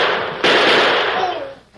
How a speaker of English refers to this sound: Jumping snakes, you... You shot the lawman.